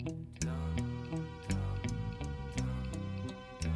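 A grandfather clock ticks steadily, with crisp, evenly spaced beats about twice a second over a low, sustained tonal hum, moderately loud, with no voices.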